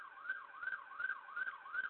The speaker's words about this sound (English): My goodness, it's busy over in Canada. Yeah, I don't know what the hell is going on. There's ambulances. That's right, guys. You hear an ambulance.